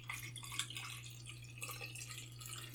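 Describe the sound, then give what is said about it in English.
Liquid trickles and splashes steadily as FA-1027 film developer is poured into a Stearman press tank to develop Filmopan 100 film, quiet, with a constant low electrical hum underneath and no talking. “Let me pour in my developer.”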